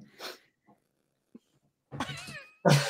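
A cat in a movie ad lets out a drawn-out, wavering meow after a brief breathy rustle and a few faint clicks, followed by a sudden louder, harsher cry at the very end.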